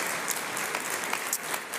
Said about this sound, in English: we're going to partner with the Exodus Road and we're going to help expand their aftercare shelter in Thailand. Right now they have, yeah, we should clap for that. That's a beautiful thing.